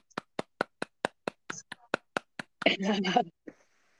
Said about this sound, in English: Wow, a first timer. I would give you a round of applause for that.